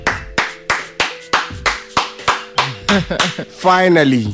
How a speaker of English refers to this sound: Can I clap? You can clap now.